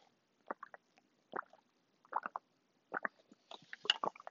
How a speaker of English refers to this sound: Sorry, I drink a lot of fucking water.